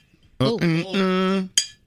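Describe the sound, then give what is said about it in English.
A voice imitates the ring of a struck drinking glass: one sustained, bright tone with a few pitch shifts, ending in a brief hissy click. “Here's a glass.”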